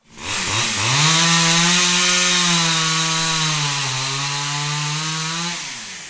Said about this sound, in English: So old, she could barely pull the starter handle on her chainsaw.